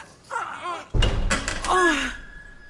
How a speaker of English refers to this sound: Just push open these doors.